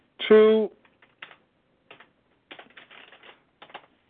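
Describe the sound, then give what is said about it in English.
A brief vocal sound opens, then scattered light clicks and bursts of computer keyboard typing follow, fairly quiet, in irregular clusters with short pauses between them, as someone pulls up a Bible verse on the computer. “Hold on a second. I'm clicking.”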